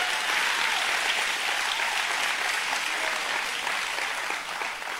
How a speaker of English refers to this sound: Say amen and give God one hand clap. Clap so loud it wakes your neighbor up right quick.